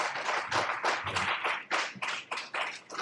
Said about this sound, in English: Come on, can we give our God a hand clap of praise?